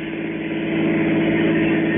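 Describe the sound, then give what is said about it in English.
A car engine hums with a steady, low droning tone, growing slightly louder after a moment as the car, loaded with luggage, pulls away in L.A., continuous for a couple of seconds. “I piled my luggage into the back of his car and we took off.”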